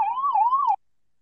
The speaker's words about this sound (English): Can you just hold on? An ambulance is crossing. So I'll just mute myself for a second.